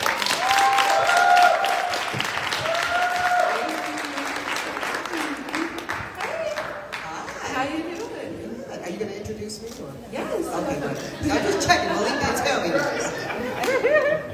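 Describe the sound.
An audience claps in a steady, dense round of applause lasting the whole stretch, with voices and chatter mixed in underneath and the clapping easing slightly toward the end, welcoming the event's moderator, a young author and journalist.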